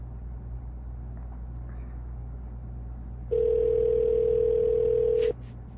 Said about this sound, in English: They're just gonna let it ring. He's probably working there by himself. You know what? Let it keep ringing